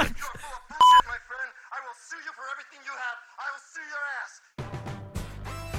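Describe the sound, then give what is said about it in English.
A single short, loud electronic telephone beep rings out near the start of The Rockford Files theme, followed by people talking, and then a tuneful piece of music kicks in at the end. “Someone on the phone.”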